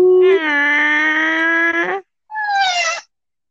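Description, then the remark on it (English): A cat named Carl lets out a long, loud, drawn-out meow, then a shorter second meow after a brief pause, both clear with no talking over them. “I'm sorry, cat, I didn't mean to scare you.”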